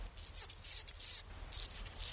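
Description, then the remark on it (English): A male Anna's hummingbird sings a thin, scratchy, buzzing song in two bursts with a short gap between, high-pitched, with no talking, on a chilly February morning near Seattle with the temperature below 40 degrees. “On a chilly February morning near Seattle, with the temperature hovering below 40 degrees, a bird is singing lustily. And not just any bird, it's a hummingbird. A male Anna's hummingbird, whose throat and crown flash iridescent rose.”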